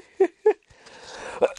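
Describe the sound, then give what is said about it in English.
Two short, sharp coughs, a brief pause, then a raspy breathy stretch ending in two more quick coughs. No talking. “I'm sorry. The cough is still there.”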